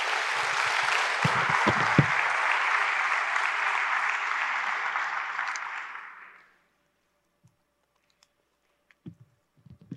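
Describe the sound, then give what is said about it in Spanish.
Loud, sustained applause from a crowd, a dense wash of clapping lasting about six seconds before fading out, followed by near silence with a few faint thumps; a church audience applauding God during a sermon. “Dale un fuerte aplauso a tu Dios.”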